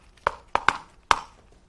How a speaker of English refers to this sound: Then you'll listen. Here's the door knock.